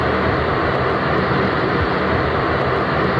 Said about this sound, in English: residents have complained about the noise from the giant fans that are used to cool the computers. I'm going to play you the sound from a news report from the TV station WATE so you can hear what it sounds like.